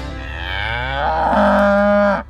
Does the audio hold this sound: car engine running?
no